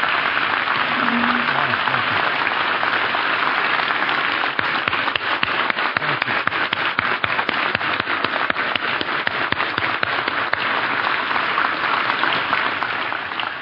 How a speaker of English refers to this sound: finally, how about a big round of applause for all of our panelists and participants this morning? This has been wonderful.